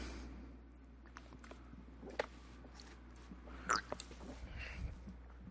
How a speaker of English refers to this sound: I hope you didn't just catch the sounds of me swallowing there, but yeah, it tastes like Pepsi.